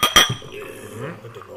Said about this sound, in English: So, I'm going to clink these glasses. I know we're letting the ice get in there just a little bit. But, clink.